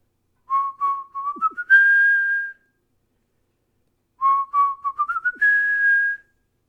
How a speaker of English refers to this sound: As the giant continued to get closer, thump, thump, thump, Lulu pulled out her flute, and as quickly as she could, she played the magic tune the dwarves had taught her.